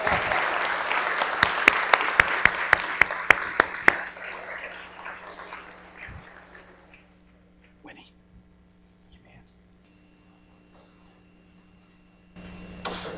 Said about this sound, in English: And they're going to clap in a second.